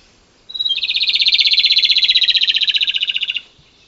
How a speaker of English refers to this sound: And last but certainly not least, I also learned that rufous-tailed robin's song is really, really cool. It sounds a bit like a chaffinch who's forgotten the words after taking some performance-enhancing drugs. Hopefully you'll see what I mean.